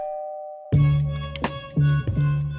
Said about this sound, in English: He rings the doorbell.